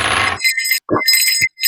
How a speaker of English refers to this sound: Where's my ding, ding, ding, ding, ding, ding, ding? Here it is, right here. Hold on. Got a bell.